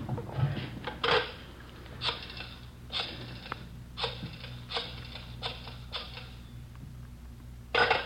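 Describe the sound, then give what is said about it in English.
A telephone being dialed to call a wife, let ring once and hung up: a run of short mechanical whirring bursts about a second apart, fairly quiet over a low hum, ending in a louder clunk like the receiver going down. “You let her ring once. She knows the signal.”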